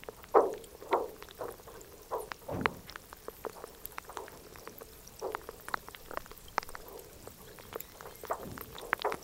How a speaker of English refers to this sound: It's a small polar glacier that towers over a lake, and as it melts, the water trickles down and the ice creaks. Wind blows much of the time over this bleak but beautiful place, making unearthly noises.